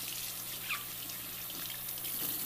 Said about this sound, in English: I'm going to just put a little water in each of these bottles so I can... Oh, actually, I have to turn it back on for a second.